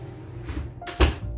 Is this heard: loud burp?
no